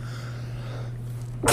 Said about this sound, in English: I just sneeze farted so bad right now. I heard both. Did you hear both of them? Yes.